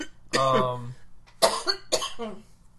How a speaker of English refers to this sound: I have a disgusting cough.